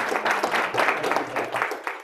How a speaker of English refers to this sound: Can we give him a quick round of applause?